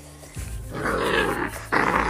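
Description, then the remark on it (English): A dog growls in two low, rumbling bursts, the second starting abruptly and sounding louder, with no talking over it. “that's his growl right there.”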